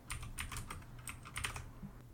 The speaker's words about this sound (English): Can you make me type again? Get all that typing sound on the audio?